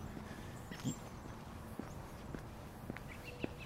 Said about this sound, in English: You hear my feet step on the pavement here. I'm actually walking on a little road because there's no sidewalks through this neighborhood.